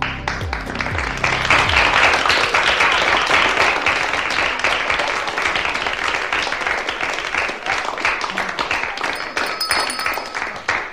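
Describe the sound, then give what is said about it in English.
An audience on the Brooklyn Cafe Show applauds steadily for about ten seconds, a dense wash of many hands clapping at once that stays loud and even throughout, with a short low musical sting at the very start. “No, it was because it got applauds now.”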